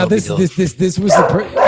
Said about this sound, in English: Oh shit! Yeah, that's good though. That's what you want. You want that. You want the dog to bark if someone's at the door.